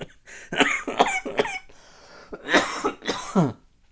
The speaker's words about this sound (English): Man, I'm not gonna be able to, I'm not gonna be able to keep all of these coughs off the recording. You know, it's the truth. These coughs are real.